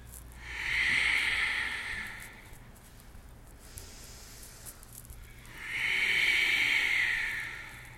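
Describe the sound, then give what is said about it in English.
Two long, steady breaths with a soft, hissing, ocean-like rasp, each lasting about two seconds with a quiet pause between them, the slow controlled breathing of ujjayi practice. “Ujjayi.”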